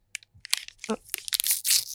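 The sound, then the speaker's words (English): Crinkly plastic wrapper rustling and tearing on the mic as a dark chocolate, sea salt and almond nut bar package is pulled open, a burst of sharp crackles and crunches over about two seconds. “Love the rustling on the mic.”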